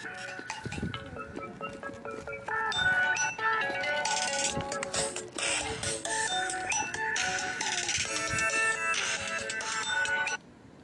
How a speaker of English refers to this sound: Damn that damn phone.